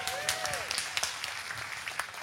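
An audience claps together in a dense, steady burst of applause lasting a couple of seconds, with a brief high whistling tone sliding at the start.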